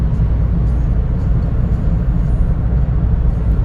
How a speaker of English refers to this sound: I'm going 72, 73, 74, 75, 76 now, miles an hour in the left lane. I'd go faster, but there ain't nowhere to go.